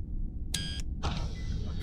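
A sci-fi sliding door opens: a short, bright tonal chirp followed by a sustained airy hiss over a steady low hum, with no voices.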